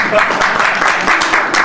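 A crowd applauds steadily, with dense overlapping claps forming a loud, even wash of noise throughout, and no voices breaking through.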